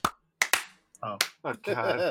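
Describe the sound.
Sharp, crisp single hand claps snap out with quick decays, a few brief bursts spaced apart after a count of one, two, three, testing timing in a digital audio workstation, while a voice talks in between and afterward.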